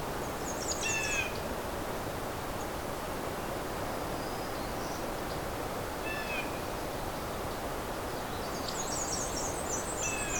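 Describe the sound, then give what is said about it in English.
Thin, high-pitched chips and short trills of warblers, including black-and-white warblers, flying around on a shoreline come in scattered bursts over a steady rushing background noise. No one speaks. “This is just one spot along a very, very long shoreline. Probably crawling with warblers everywhere.”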